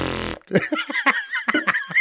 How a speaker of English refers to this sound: Even now, it's hard. Look, even you, right? It's hard not to laugh at a fart. It really is.